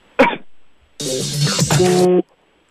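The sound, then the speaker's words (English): A caller imitates a cough: one short sharp burst, then a longer rough, strained, throaty rasp lasting about a second, loud with no talking. “… and Boca, go ahead. Imitate my cough.”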